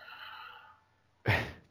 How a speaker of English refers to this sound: Don't be the sniffling brother this time. Yeah, no one's sniffing. Oh, that was me. I did the sniff. You just did the sniff, yeah.